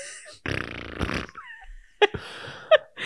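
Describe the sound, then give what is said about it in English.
A voice makes a blubbery raspberry sound with the lips, a buzzy mouth-fart noise lasting about a second, followed by a couple of sharper sputtering bursts and some breathy vocal noise. “A good, yeah, time, good for some fart noises.”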